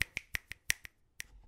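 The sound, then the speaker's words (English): A quick run of crisp finger snaps from an audience in honour of Claudette Colvin, about seven sharp clicks at a steady brisk pace, with a short pause before the last one. No one speaks. “So, finger snaps for her.”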